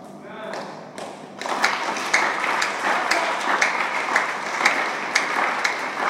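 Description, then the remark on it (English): A group claps steadily after a voice fades out at the start, the sustained applause dense and uneven with sharper individual claps standing out throughout. “The way your clapping is as if it's been affected by HIV is.”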